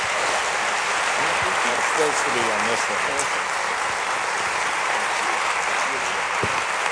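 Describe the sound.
Sustained audience applause, a dense steady wash of clapping at constant loudness for several seconds, with faint voices murmuring and calling out underneath.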